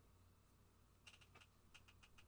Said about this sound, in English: Are you typing a computer?